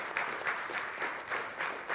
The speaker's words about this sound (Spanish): ¿Cuánto dicen gloria a Dios? ¿Usted le puede dar un aplauso al Señor en esta mañana? Gloria a Dios.